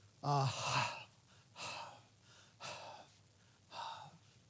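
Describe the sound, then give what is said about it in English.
A person imitates a thirsty deer panting: four loud, breathy exhalations spaced about a second apart, the first with a voiced, gasping 'ah' quality, alone. “Try saying it as if you were panting, and you will see what they mean.”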